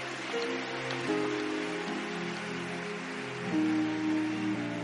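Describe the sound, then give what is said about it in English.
A church audience claps their hands together to give God praise, a dense, steady crackle of many hands that swells slightly toward the end, with sustained low keyboard chords holding underneath. “Come on, clap your hands and give God some praise here.”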